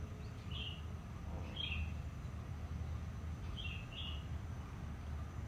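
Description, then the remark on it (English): Birds chirp outdoors in short, high bursts, a few calls spaced apart over a steady low rumble of ambient background noise, soft. “Sounds of the birds changing and shifting around us.”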